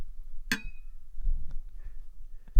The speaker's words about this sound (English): And that is our traditional drink clink for and for other purposes.